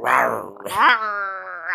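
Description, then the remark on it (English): A person vocally imitates an angry growl, the character Edward growling at her: a short, rough rumbling snarl that rises into a strained, drawn-out groan lasting under two seconds. “And he growls at her.”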